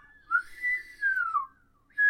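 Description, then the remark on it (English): Someone whistles a few wavering, sliding notes, with short pauses between phrases and one brief final note; no talking. “I can't whistle. I think people know what whistling sounds like.”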